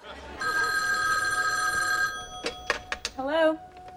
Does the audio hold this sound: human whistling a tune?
no